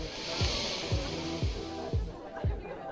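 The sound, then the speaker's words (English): A person breathes deeply to show off healthy lungs, making a steady, airy rush of air, with soft low thumps repeating about twice a second underneath. No words are spoken. “Hear those bad boys filling up with air? Wow, huh? How impressive. Breathing.”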